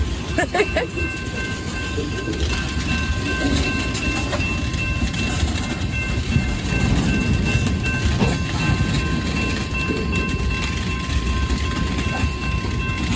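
A train rolls slowly past, coasting because of a red signal ahead, in a steady, continuous low rumble with scattered clanks of the cars and a faint, sustained high-pitched wheel squeal over the top.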